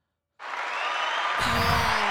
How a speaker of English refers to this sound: Which one is the clap?